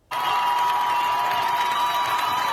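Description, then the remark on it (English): A crowd of thousands in Iran cheers loudly and continuously as a woman without a hijab cuts her hair, a dense roar of many voices and whistles that starts abruptly and holds steady without pause. “A woman in Iran with no hijab chopping her hair to a cheering crowd of thousands.”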